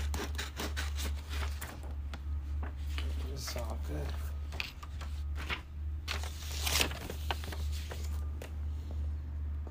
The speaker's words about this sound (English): You know what's so different this time is I gotta cut the paper too. I gotta cut the paper two times for every button.